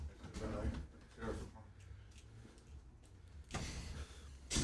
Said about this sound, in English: We got to grease that door, dog. Sorry about that, guys.